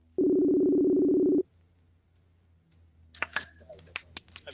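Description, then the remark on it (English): A single loud, steady ringback tone of an outgoing phone call to the manager of a brand-new Academy Sports store in West Virginia buzzes for about a second, then falls quiet before a cluster of sharp clicks and rustling noises as the line connects. “so I'm gonna give him a call.”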